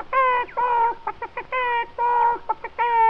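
A person imitates chickens cackling with their voice, a quick run of loud, pitched bawk-like syllables in bursts of long and clipped notes, clear with no other sound.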